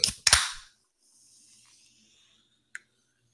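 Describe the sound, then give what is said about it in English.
A can of water cracking open: two sharp snapping pops followed by a brief hiss, then faint high fizzing and a single small click later, with no voices. “That sounds like that new water in a can that I'm hearing about.”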